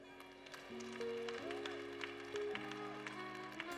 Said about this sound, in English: I never said to clap hands. So if you are clapping hands, make sure you are clapping hands seriously.